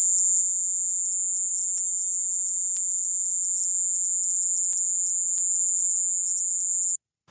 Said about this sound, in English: So that Indies short-tailed cricket.